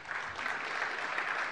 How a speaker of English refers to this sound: I like this guy. Give Peter Gutman a round of applause.